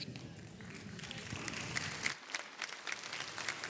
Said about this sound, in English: Now, don't clap for me. You want to clap, clap to the Lord, not to me.